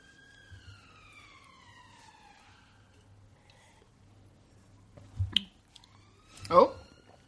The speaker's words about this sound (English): There's a siren. Hold for siren. Hold for siren. Hold for sound.